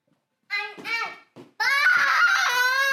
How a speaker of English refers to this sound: Oh, crazy person. Thanks for yelling.